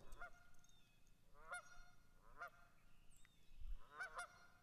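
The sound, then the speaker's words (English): Several geese, an adult pair with seven goslings, honk in repeated harsh calls, about four bursts spaced a second or so apart, moderately loud over a low outdoor rumble. “Mama and Papa Geese. With their goslings in tow.”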